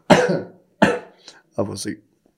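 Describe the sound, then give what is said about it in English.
Several sharp coughs in quick succession: two single harsh bursts, then a rougher double cough, with short silences between them. “There's not like a random person just in our corner coughing for the sound of But things.”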